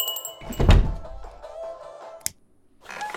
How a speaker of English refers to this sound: What was that all about? I heard some commotion from upstairs and a whole lot of slamming doors.